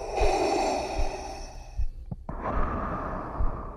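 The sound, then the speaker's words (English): Slow, labored mechanical breathing through the helmet and mask of a pressurized suit, a loud rasping inhale and exhale, with a brief pause and clicking hiss in the middle before the next heavy breath begins. “Fully encased within the pressurized suit, he heard a labored, mechanical rasp.”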